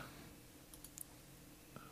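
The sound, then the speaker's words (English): A few quiet, sharp clicks and clatters in quick succession as dice are rolled, tumbling briefly across a surface, then one last faint tick. No one speaks. “Here's the dice.”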